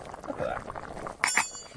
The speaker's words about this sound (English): However, these little meth stoves never cease to amaze me, just the amount of heat that they belt off. Well, look at this. I mean, this is boiling away. Look at that.